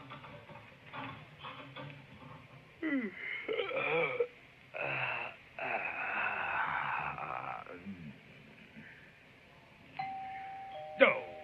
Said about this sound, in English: Oh, I knew it. Doorbell's ringing!